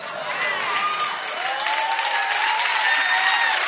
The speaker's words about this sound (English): Y'all sound a little too excited about that. Kind of sketchy how much y'all clapped about that.